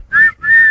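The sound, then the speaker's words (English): Two quick, shrill whistle blasts in a row, the second slightly longer, each holding a steady high pitch. Loud, with no voices around them. “All right. Blow the whistle.”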